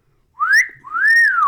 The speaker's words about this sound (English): Oh, pardon, madame. The whistle was from my good friend,